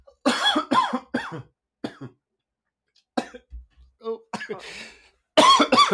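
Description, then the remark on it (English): A person coughs several times in short bursts, with pauses between and a brief low thump; other voice-like sounds mingle in. “Excuse me, I thought I was going to sneeze, but it's a cough.”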